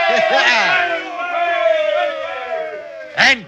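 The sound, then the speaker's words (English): A group of sailors cheering together after being saved when a wave carried their boat ashore, a sustained, overlapping roar of voices with rising whoops, ending in one sharp, loud shout. “Give a cheer, lads.”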